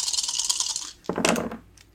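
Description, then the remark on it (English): Dice rattle and clatter across a hard tabletop, a quick burst of bright clicking that settles and then tumbles again before fading out, rolled for damage in a tabletop role-playing game. “Oh, I wish you guys could see this dice roll.”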